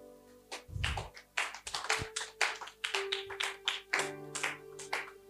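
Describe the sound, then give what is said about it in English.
An audience claps in loose, uneven bursts of sharp slaps that come and go for several seconds, while a steady low musical tone hums beneath the applause, offered to a preacher for his sermon. “Oh, I'm not worried with the clap offering.”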